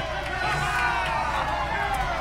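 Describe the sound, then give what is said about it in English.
A passing crowd outside cheers and shouts together in a steady, loud roar of many overlapping voices, holding at an even level without a clear break. “Thank you, passing crowd.”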